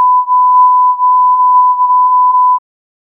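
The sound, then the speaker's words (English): A single steady electronic censor beep at a constant mid pitch, covering a phrase that cannot be said, holds loud and unbroken for about two and a half seconds, then cuts off into silence. “That was just a long beep, because we can't say that on this podcast.”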